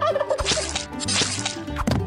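A turkey gobbles in a rapid, warbling burst that repeats in waves over two seconds, loud and rattling with no voices around it.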